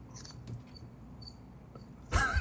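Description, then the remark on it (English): Faint, high-pitched cricket chirps come in short intermittent bursts over a quiet background, ending with a sudden louder burst of noise near the close. “I'm hearing crickets right now. Literally, I'm hearing crickets.”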